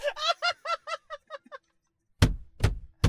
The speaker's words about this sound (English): No, that's why I'm punching my door. I don't have airbags in my door.